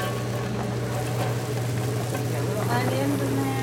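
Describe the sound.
Steady sizzling of little chopped onions being poured into a hot pan and frying, a continuous crackle with a low hum underneath, fairly loud, with a voice murmuring faintly in the background.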